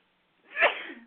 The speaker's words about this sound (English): Excuse me, that made me sneeze.